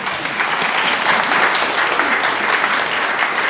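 A crowd claps steadily for a person who has just read a passage aloud, a dense wash of many hands patting at once, holding at an even, fairly loud level for several seconds without voices rising above it.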